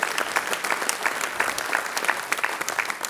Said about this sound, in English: Ladies and gentlemen, yeah, you can clap for that, absolutely.